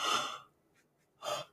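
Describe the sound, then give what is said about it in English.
A breathy yawn from a tired person: a long airy intake of breath, a short pause, then a second breathy exhale. No talking. “Oh, I'm yawning because I'm so tired.”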